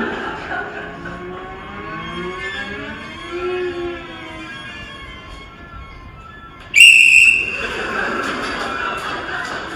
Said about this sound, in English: But the other cellist keeps going. And she has her whistle. Yeah. And she goes, tweet.